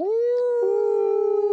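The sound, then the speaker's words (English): A single sustained wolf howl sound effect for the Arkansas State Red Wolves rises quickly and holds a steady, slightly wavering pitch, loud, with no other sounds around it. “The Arkansas State Red Wolves.”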